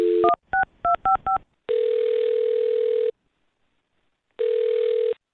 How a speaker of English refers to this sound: All right, well, I'll dial her phone number right now, get her on the phone, and see if we can find out what happened. Okay, here we go.